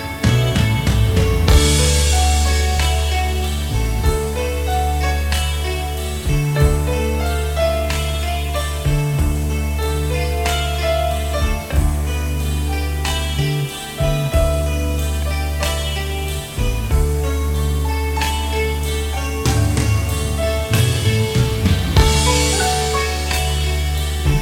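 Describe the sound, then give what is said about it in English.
A rock band plays an instrumental passage live at full volume, closing out the show, with heavy bass, driving drums and layered guitars and keyboards sustaining a dense, steady wall of sound throughout, with no singing or talking. “They continued as if this next song, the last song on the album of …, they kind of blended it all together and then closed out the show, the instrumental,”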